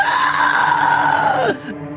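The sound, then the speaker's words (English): A baby, upset while being gently waltzed, lets out a horrific scream: one loud, shrill sustained wail that slowly sags in pitch for about a second and a half before breaking off abruptly. “And then it turns into this horrific, horrible scream.”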